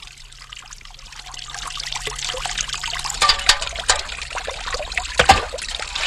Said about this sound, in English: You have to get this... you're getting the water, actually, from the mountain. It comes off the eastern side of the high cliff there up